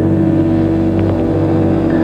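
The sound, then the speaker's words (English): A loud motorcycle engine, the high-tech experimental all-terrain super motorcycle of the 1985 ABC series Street Hawk, roars, its steady, throaty drone holding for a couple of seconds with a slight surge partway through. No voices. “A concept developed into the 1985 series Street Hawk for ABC, revolving around a high-tech experimental all-terrain super motorcycle designed to fight urban crime.”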